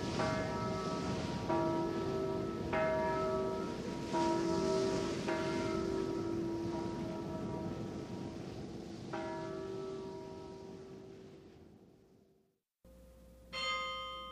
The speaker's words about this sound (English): The Chimes of Dordrecht. These are the most joyous bells in Europe. They can be solemn and gay. They can laugh, console, and amuse.